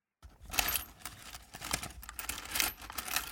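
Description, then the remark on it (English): Metallic coins, mostly British 2p and 50p pieces, rattle and clink together in a foreign currency piggy bank, a busy jangling shake with bright, scattered clinks over about three seconds, fairly loud, no voices. “Here's what I found when I searched through my own foreign currency piggy bank.”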